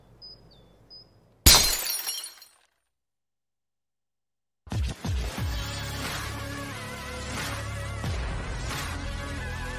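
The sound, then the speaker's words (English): A glass bottle smashes in one sharp, loud crash with a brief tinkling tail, in a Stateside Vodka advertisement, followed by a couple of seconds of silence before busy music kicks in. “You're telling me that bottle is cut in half?”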